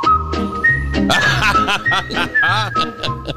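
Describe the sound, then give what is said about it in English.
A person whistles a TV show theme song to a cockatiel, a bright, steady melody of clear sustained notes with some sliding pitches, fairly loud over a busy background of other sound. “He started whistling that song, and the bird started dancing, kind of bobbing its head.”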